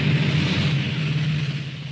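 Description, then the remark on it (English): Steady, dense roar of high-speed traffic on a new multi-million dollar freeway, drivers speeding and hurrying, with a low engine drone and broad hiss of tires, continuous and fairly loud for the whole stretch, no voices. “Entering our new multi-million dollar freeway, first, the high-speed traffic. Drivers speeding and hurrying for no other reason than speed itself.”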